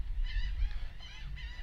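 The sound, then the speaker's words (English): Seagulls call repeatedly in quick succession as a sailboat called Margaritaville goes by, their harsh, nasal cries overlapping in about three bursts over a steady low rumble of wind and water. No one speaks. “And that, I feel like I'm getting swarmed all of a sudden by seagulls.”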